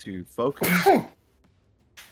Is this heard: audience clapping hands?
no